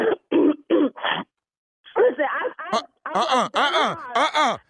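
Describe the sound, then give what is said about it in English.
Four short, rough coughs in quick succession from someone who says they have a cold, then a brief pause before a stretch of voiced, speech-like sounds. “Did you just cough again?”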